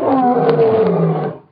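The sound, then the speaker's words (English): A man imitates a lion's roar up close, one loud, sustained, throaty bellow lasting over a second before cutting off abruptly. “You don't have to make lion noises.”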